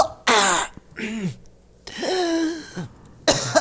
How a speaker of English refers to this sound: Why are you coughing into the mic? I'm sick, man. I don't feel too good.